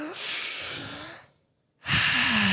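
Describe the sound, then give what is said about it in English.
A deep breath drawn in with a broad airy rush, a brief pause of near silence, then a long, loud exhale with a breathy, slightly voiced tone. “Do the deepest breath. Go”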